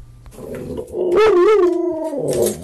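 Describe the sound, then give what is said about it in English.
A dog lets out a loud howl, its pitch rising and wavering in a long sustained wail after some softer whining at the start. “He also has a great howl.”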